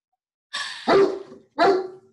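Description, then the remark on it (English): A dog barks twice, each bark sharp and loud with a short gap between them, preceded by a brief rough, breathy huff. “The dog and the baby, man. Go lay down.”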